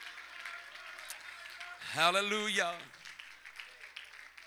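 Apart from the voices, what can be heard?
audience clapping hands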